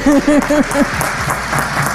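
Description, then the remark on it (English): An audience breaks into steady applause, a dense patter of many hands clapping, opened by four short rhythmic vocal whoops before the clapping carries on alone. “Come on, clap.”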